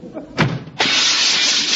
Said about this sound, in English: Gee, he slammed the door so hard he broke the glass.